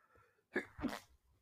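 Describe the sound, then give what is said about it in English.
A single sneeze in two parts, a sharp intake followed by a loud, breathy burst, with quiet background noise before and after. “Bless you.”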